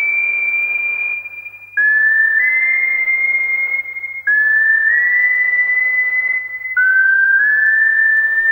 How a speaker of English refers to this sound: Starts with just the whistling, and then here come the beats. Here comes the industrial edge.